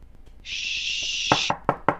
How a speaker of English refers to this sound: That was me knocking on wood.